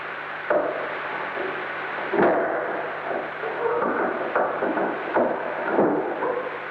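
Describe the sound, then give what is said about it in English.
A wooden door being opened at about 4:15 in the morning: a series of dull knocks and clunks at uneven intervals over a steady, rough background rustle, with no squeak of the bolt. “At about 4:15 in the morning, we recorded the sound of the door being opened again.”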